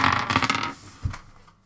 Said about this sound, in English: Hold up. I dropped a die.